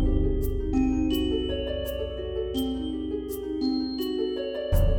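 A ding-dong chime plays a slow run of clear, ringing bell tones that step from note to note with a steady tapping pulse, fairly loud, with no talking, before cutting off abruptly.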